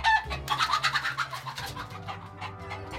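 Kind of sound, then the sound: bird, chickens clucking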